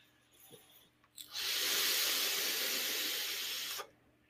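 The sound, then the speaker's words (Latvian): A steady airy hiss of an inhale drawn through a mesh vape atomizer, lasting about two and a half seconds before cutting off, with no talking. “Vēl var tvaicēt. Nebūs mans, jo karstāks tvaiks paliek.”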